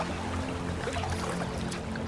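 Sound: river water flowing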